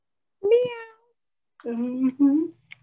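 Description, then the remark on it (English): Two drawn-out meows, a short rising one followed after a pause by a longer, lower wavering one, fairly loud. They sound like a human voice imitating a cat. “Meow.”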